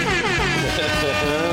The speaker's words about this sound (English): It's all happening. Air horns all over the place.